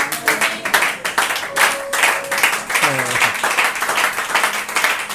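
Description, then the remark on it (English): An audience applauds steadily for the preacher for about five seconds, a dense, even patter of many hands, with scattered voices and a brief cheer rising over the clapping. “Can we clap for Papa?”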